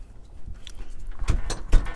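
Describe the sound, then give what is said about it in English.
A front door of a house in Dallas is opened to let NASA out onto the porch: a quick run of latch clicks and solid thumps near the end, over a faint low background hum, with no one speaking. “open that door, NASA's gonna run out.”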